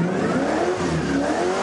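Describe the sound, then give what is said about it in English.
A loud race car engine revs steadily as race car champion Joey Logano takes a passenger for a spin outside Charlotte, its harmonic whine rising and falling slightly as it accelerates, with no voices present. “The day we met them outside Charlotte, Joey took Gavin for a spin.”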